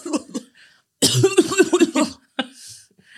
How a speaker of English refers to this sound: You just coughed into the mic and kept going? You're wild, bro.